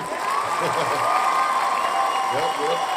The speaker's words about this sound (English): I'm going to give another applause to Tony Khan once again.